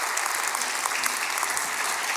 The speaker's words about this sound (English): Let's welcome her. Give her a round of applause.